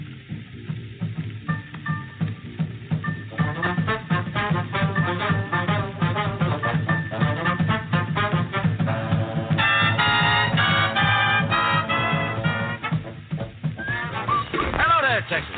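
A recorded song plays its opening, a full, steady rhythmic arrangement with bouncy bass and bright melodic lines that swell midway, loud and continuous from start to finish.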